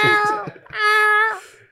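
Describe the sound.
A person imitates a howling cat with a couple of drawn-out, nasal yowls, the second long and steady before trailing off, loud.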